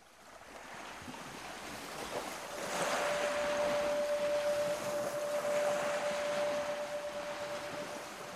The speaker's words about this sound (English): Water lapped against the low hull of the boat, its rhythm synchronized with the poles on the float line as the small white plastic pods that kept the net afloat knocked against the shiny metal of the vessel.